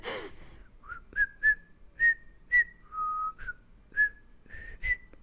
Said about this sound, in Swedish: Nu ringer det också på min dörr ett ögonblick.